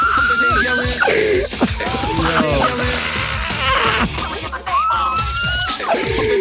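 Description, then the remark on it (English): A loud, dense crowd of voices yelling and shouting over one another, sustained for several seconds with overlapping cries and no clear words. “What the fuck are they yelling?”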